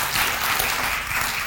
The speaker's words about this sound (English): Yes, we are breaking ground on a permanent facility June 1st. Praise God, from all blessings flow. However, yeah, that's a good thing to clap about.